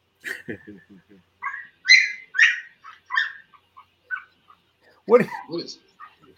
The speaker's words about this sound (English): Where is that coming from? Yeah, I think that's, what is that? Is that your puppy Hitch? That might be one of my puppies, I think. Somewhere. Yeah, I have puppies somewhere.